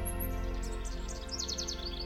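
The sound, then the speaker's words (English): Birds chirp softly in quick, repeated high tweets over a steady low humming drone with no one speaking. “Hear the birds.”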